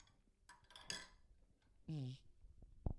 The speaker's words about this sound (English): Oh my gosh, I hope that wasn't too ASMR-y for some of you and hearing me gulp.